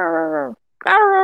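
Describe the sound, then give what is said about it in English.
A person imitates the bark of a dog named Titan with two loud, drawn-out, low voiced woofs separated by a brief pause, the second starting with a sharper, rougher onset. “Titan's bark would be”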